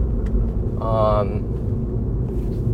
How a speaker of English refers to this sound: The exhaust pops, which a lot of people don't really know what that sounds like. My engine's almost warm.